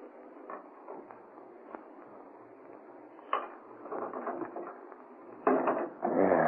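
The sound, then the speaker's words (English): A key scrapes and clicks in a lock a few times, then the wooden door of a city laboratory is pulled open with a louder thud and rattle, with no voices. “Yeah, this is the door. And I think one of these keys will fit.”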